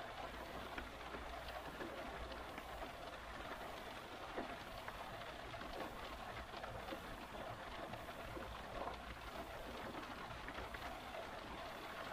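Steady rain patters on a car roof, a dense, even drumming of countless small drops with occasional sharper taps, continuing without pause and with no voices.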